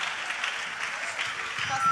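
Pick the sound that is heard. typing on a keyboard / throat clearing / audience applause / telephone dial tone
audience applause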